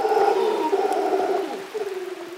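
A troop of golden-mantled howler monkeys, large black monkeys 2 to 3 feet long with a golden fringe, call to each other across the cloud forest in the rain in Rincon de la Vieja National Park, northwest Costa Rica. A deep, drawn-out moaning roar holds steady and loud, then breaks into a pulsing, throaty rhythm. No one speaks.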